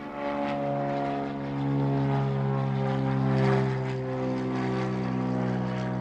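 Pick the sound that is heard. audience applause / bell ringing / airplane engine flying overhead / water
airplane engine flying overhead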